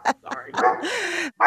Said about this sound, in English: Sorry. Is your dog okay? Oh, yeah. Sorry. My dog is going to town. I didn't even factor in the Fenway of it all. I'm sorry. I'm so sorry. No, not at all. My dog was barking a little bit earlier, so it's good. It's a dog party.